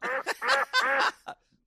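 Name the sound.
chicken clucking imitation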